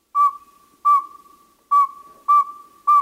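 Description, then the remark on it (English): A male northern saw-whet owl gives its advertising call, a steady series of five clear, high, whistled toots, evenly spaced about two per second, alone with no talking. “Here are two males. Listen carefully to the pacing of their hoots.”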